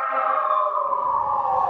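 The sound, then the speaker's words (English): A siren outside wails steadily with a strong, bright harmonic tone that sinks slightly in pitch as it goes by, loud and alone with no voices over it. “One more siren.”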